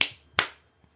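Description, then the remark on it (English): Two sharp hand claps about a third of a second apart, each ringing briefly, followed by a much fainter tap; no one speaks. “Round of applause. Let me see those assets clap.”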